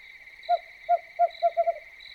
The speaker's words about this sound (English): The screech owl is tooting from no more than 30 feet away and seems not to mind my presence.